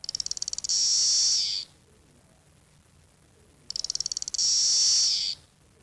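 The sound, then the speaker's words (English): A single cicada sings in two loud bouts, each starting with a quick ticking run that swells into a shrill, steady buzz and then cuts off, with quiet between. “Did it sing, that lone cicada? Yeah, it was singing.”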